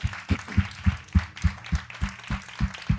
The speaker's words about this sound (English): Let's put our hands together and clap to the Lord. Amen.